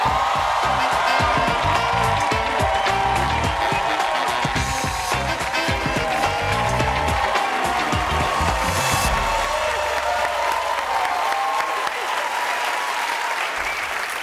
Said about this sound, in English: Wow, that's like the best applause I've ever gotten. That is not true. They're amazing, but that is not true.